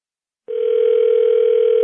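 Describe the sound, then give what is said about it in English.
A telephone line tone, the ringing heard on the caller's end of a prank phone call on the Buck Wild Morning Radio Show on WHBJ, starts after a brief silence and holds as a steady, clear, fairly loud electronic hum, with no voices. “Roy performed one of the show's signature bits by making prank phone calls to unsuspecting individuals.”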